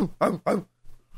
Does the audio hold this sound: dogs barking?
yes